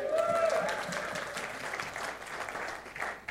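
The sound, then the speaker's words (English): A crowd applauds steadily, a dense wash of clapping that stays fairly loud throughout, with a brief whistle-like tone near the start. “Well, thank you for that somewhat non-realistic applause”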